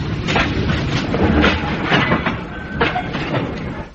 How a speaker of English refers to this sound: Quick. The train stopped.